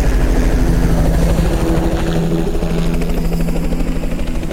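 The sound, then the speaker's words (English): An air evac helicopter in flight, its steady rotor thrum loud, with a low droning engine tone and rhythmic blade chop continuing throughout, no voices present. “The indication is match, merge, and soar with the sound of the helicopter.”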